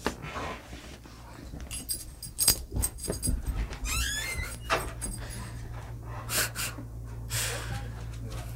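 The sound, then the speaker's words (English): A door slides and clatters open as a dog is let outside, the dog snorting and breathing heavily amid brief scuffling and rattling, then a low steady hum as things settle. “She just went outside to bark.”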